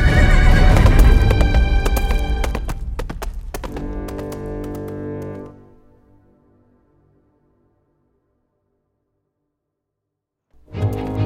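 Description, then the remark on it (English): A horse named Hannibal, one of Billingsgate's horses taken from the stable, whinnies loudly while hooves clip-clop in a quick, clattering burst, then the sounds fade to near silence before a brief return of noise at the end. “Using the thick smoke as a cover, I managed to escape back into the stable where I borrowed one of Billingsgate's horses.”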